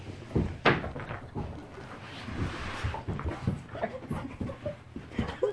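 An excited, wet female dog scrambles and shuffles around, panting and huffing with a faint whimper, amid scattered bumps and one sharp knock near the start.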